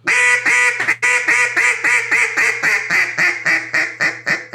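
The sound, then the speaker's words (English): A duck call blown in a loud series of raspy quacks, starting long and drawn out, then quickening into shorter, evenly spaced notes that taper off toward the end. “Detailed Duck Calling Tutorial with Jargon Game Calls Maker”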